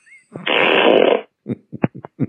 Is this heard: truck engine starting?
no